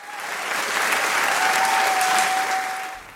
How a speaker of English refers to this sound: Indeed, the more insistently I screamed at them to run for their lives, the louder grew their excitement, laughter, and applause.